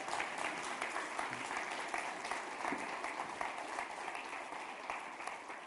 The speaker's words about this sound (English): I asked her this morning, so can we give her a big round of applause?